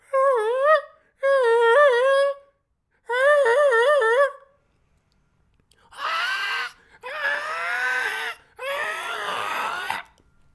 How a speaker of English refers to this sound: The gulls are crying this morning. I don't know if you guys can hear that.